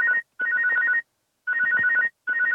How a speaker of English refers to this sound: Okay, my phone started ringing a spam call.